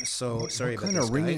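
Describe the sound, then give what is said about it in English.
A phone ringtone chirping like a cricket, short high-pitched bursts repeating about twice a second beneath a man talking over it. “If your phone rings like a cricket, that's an urgent phone call.”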